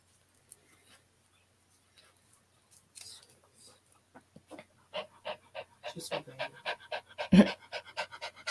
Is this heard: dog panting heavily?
yes